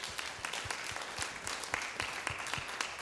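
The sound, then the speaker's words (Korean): An audience at Saemmul Church applauds to give glory to God: dense, steady clapping from many hands with crisp repeated claps standing out, sustained evenly for the whole stretch with no one speaking. “우리 하나님께 영광의 박수 드리겠습니다.”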